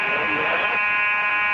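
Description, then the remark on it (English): A hotel fire alarm, pulled in the lobby by the desk clerk, blares with a loud, continuous, harsh, buzzing electronic tone, steady and unbroken for the whole moment, with a bit of muffled voice mixed in near the start. “And sure enough, the fire alarm goes off in the middle of the night.”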